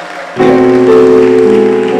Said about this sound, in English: Clap your hands together for this great man of God. Amen.